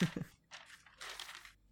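Papery rustling as pages of an empty notebook are flipped, three quick crinkly swishes of moderate loudness, with a short pause between each turn.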